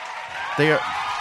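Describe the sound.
A clapping sound effect played to welcome a guest joining via Skype: a steady wash of crowd applause filling the whole second, with a short voiced whoop or cheer rising over it midway through.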